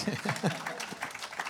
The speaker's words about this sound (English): Those are great answers, guys. Yeah. You can clap for that one. That's okay.